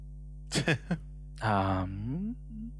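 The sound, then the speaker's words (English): A steady low electrical hum drones throughout, with a few short breathy bursts and then a long, wavering vocal groan rising and falling over it. “Oh, okay, because that sounds like a hum and not.”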